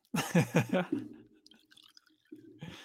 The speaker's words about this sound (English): Well, I'm going to have me some Glenfiddich single malt scotch whiskey tonight because it's a Monday night and you're off and I'm on vacation. So let's pour a little scotch.